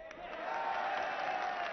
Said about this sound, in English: Okay, that's enough with the clapping.